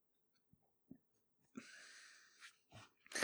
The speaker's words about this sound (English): Can you hear these keys jingle? They are for your handcuffs.